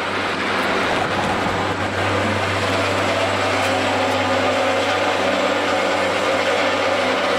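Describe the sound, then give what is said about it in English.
A cable car rumbles past on the street, a loud, steady mechanical roar with a low humming drone and grinding clatter that holds throughout, with no voices. “Get some good cable car sounds.”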